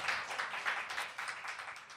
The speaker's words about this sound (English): A round of applause. The man, the myth, the legend.